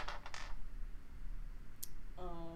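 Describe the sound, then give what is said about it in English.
A quick cluster of hard clattering clicks as dice tumble on a table during a tabletop game, then a single sharp click a moment later; a voice starts speaking at the very end. “Is that a? That's a 1. Because my dice don't like me.”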